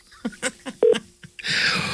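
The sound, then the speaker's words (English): A quick run of about five beeping phone keypad tones, evenly spaced, as a call is placed, followed by a steady burst of hissy line noise. No one speaks. “Take this the call.”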